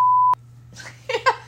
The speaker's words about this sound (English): We can beep these names out